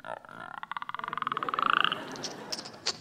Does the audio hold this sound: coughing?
no